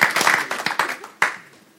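A burst of audience applause at Arena as a community volunteer is welcomed up on stage, many hands clapping in a dense, irregular patter that peaks with a sharp clap near the end before trailing off quickly.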